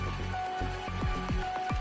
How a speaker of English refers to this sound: New Aquitaine region, France. Dordogne and Bergerac apartments were affected by a strong storm with heavy rain and intensive hail. About 1,000 houses were left without electricity. Hail damaged the roofs of houses and left dents on cars.